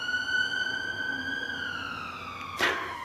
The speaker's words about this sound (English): We always get an ambulance, don't we? That's just a hillhead thing.